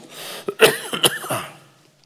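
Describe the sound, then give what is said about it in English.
A short coughing fit: two or three rough, throaty coughs in quick succession, then fading out into quiet. No one speaks. “When we get to heaven, something like this little old cough, it's not going to mean anything.”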